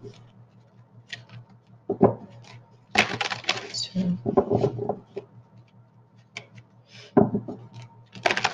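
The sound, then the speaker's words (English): A deck of tarot cards is shuffled three times in crackly riffling bursts, one long flurry in the middle and shorter ones near the end, with a voice briefly speaking between them over a low steady hum. “Let me shuffle these three times.”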